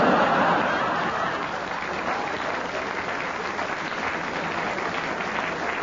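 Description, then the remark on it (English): Steady audience applause at a debate fills the whole stretch, a dense wash of many hands clapping at an even, fairly loud level, with a few faint chuckles mixed in and no one speaking. “Do you realize how cruel that applause was?”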